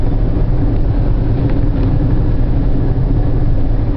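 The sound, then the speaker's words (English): A car drives steadily along a country road, its engine and tire noise forming a constant low rumble that stays fairly loud and even throughout, with no voices. “Right now, I'm driving through the country.”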